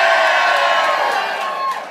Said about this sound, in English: I want to ask, I want to see if I can hear the audience. How's the audience doing tonight? Can I hear you guys?